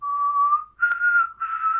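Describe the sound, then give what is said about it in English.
A person whistles a short, clear tune up close: three sustained notes that step upward in pitch, with a brief click partway through and no talking. “And then they do the whistle that.”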